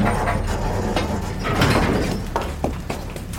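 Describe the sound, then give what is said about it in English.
An elevator running: a steady mechanical rumble hums underneath, with clanking and rattling metal, a rising whir in the middle, and a few sharp clicks and knocks toward the end as its doors slide. “On the elevator, I find myself behind the tall agent.”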